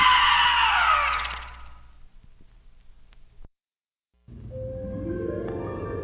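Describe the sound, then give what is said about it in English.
A loud, shrill scream falls in pitch and fades away, followed by a brief silence, then another wavering high cry rises over a low rumbling background. “Now scream!”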